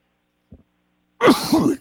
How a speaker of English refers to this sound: Anyways, but I usually sneeze in a series of threes.